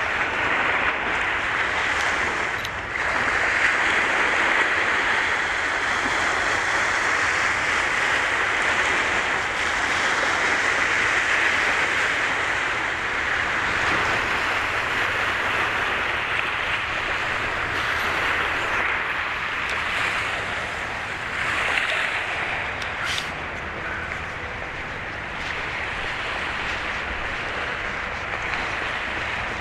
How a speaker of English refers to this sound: Sounds of the waves.